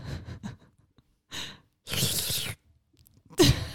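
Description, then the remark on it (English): Someone sips soda and swallows: a few short wet bursts, a longer breathy, fizzy stretch in the middle, then a louder gulp at the end. No talking. “Everyone hearing me gulp?”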